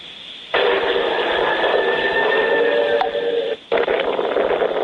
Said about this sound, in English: This is from a cell phone video, so, you know, you have the wind noise to start with and all that.